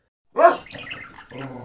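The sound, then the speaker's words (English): A large dog named Dagda lets out a sudden deep, loud vocal burst, then keeps up a low, rough growling rumble for over a second. “That's quite a big dog.”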